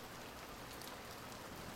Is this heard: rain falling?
yes